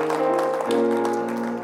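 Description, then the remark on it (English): A church audience claps their hands in praise after a closing prayer as they take their seats, a steady, dense patter while sustained organ chords ring underneath, shifting lower partway through. No one speaks. “Give him a hand clap of praise as you take your seat tonight.”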